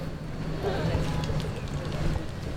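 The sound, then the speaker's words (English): Steady wind rushes and buffets outdoors in Company's Garden in Cape Town city centre on a windy Saturday afternoon, a low constant rumble, with faint indistinct voices of a gathered audience murmuring in the background throughout. “Audiences are gathered in Company's garden on a windy Saturday afternoon.”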